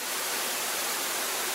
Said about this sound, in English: Gushed over the top like a waterfall.